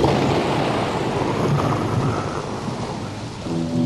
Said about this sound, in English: Raining on the desert. He said, we got to put in some rain and thunder.